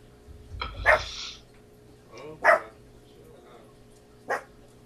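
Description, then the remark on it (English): A female pet dog barks three times at uneven intervals, each bark short, the first and second louder than the last, over a low background hum. “My dog is, she's annoying is what she is.”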